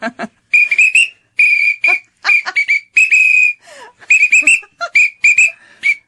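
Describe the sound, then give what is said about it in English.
A shrill emergency whistle blown in a quick series of short and sustained blasts, tooting out a bouncy marching tune, loud with brief gaps between notes. “And I think you start to lose heart, but you can always just keep blowing into a whistle.”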